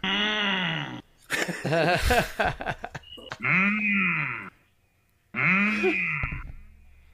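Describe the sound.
A man's voice imitates a cow, giving three long, droning moos with pauses between, and a squeaky, creaking chair rattles in between the first two moos.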